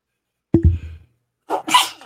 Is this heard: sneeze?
yes